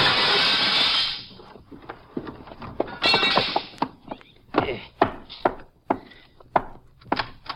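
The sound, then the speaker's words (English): A house window pane is knocked in with a gun with a loud, harsh crash, then a second shattering burst and a string of sharp knocks and clinks as the broken glass is cleared away. “If he doesn't understand, I reckon he'll just have to sue me for a broken window. I'll knock this one in with my gun, then I'll climb in and let you in through the door.”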